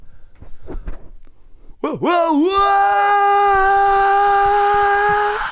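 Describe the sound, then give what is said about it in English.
A voice imitates someone falling off a multi-story car park and the body hitting the floor: after a couple of seconds of faint murmuring, a wobbling cry swoops into a long, loud, steady scream held at a fixed pitch until the end. “I want you to do the sound effect to someone who's just fallen off a multi-story car park.”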